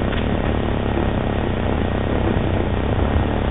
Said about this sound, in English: Instead, when I call, it turns out that it's your mom's recording playing, which is, if anyone's heard it, it just sounds like static.